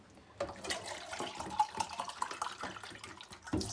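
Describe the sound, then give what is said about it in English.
Water runs steadily from a tap into a can, filling a third can of water for a cooking pot, a rushing splash with a faint ringing tone, starting abruptly after a brief quiet moment and continuing to the end. “So we're on our third can of water.”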